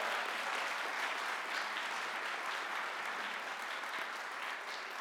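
An audience claps steadily for several seconds, a dense, even wash of many hands with no pauses and no voices over it, applauding a student who will attend the University of Georgia.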